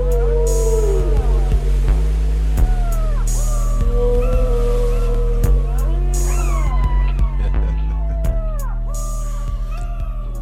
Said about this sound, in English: I don't think that's a little fella. Oh, big fella. Big whale.